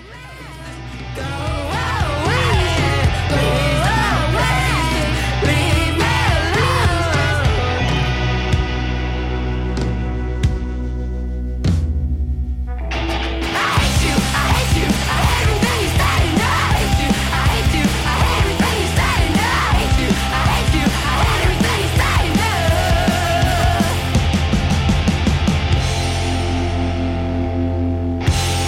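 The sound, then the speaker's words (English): A woman screams and yells over a loud, driving rock band, her raw vocals cutting through guitars and pounding drums that play continuously, with a brief drop in intensity partway through. “And then there's the screaming.”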